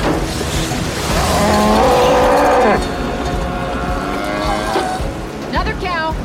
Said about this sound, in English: Oh, that there's is... a cow. There... Cow.